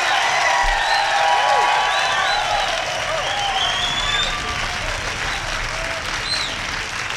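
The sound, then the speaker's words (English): A large live-show audience claps steadily and loudly throughout as a band is introduced for the 1,925th performance of their career, with cheers, whoops and rising whistles cutting through the dense wash of applause. The level holds nearly constant, easing only slightly midway. “What a crowd we have tonight.”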